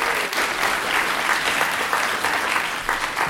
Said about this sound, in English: Oh, yeah. Round of applause for Floofy Pants.